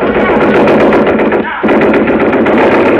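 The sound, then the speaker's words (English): A Thompson submachine gun, carried by a man in a white mask, firing blanks in a loud, rapid, sustained rattle of shots, broken by one brief pause midway before the burst resumes at full force. “A guy with a white mask on his face came in carrying a Thompson submachine gun.”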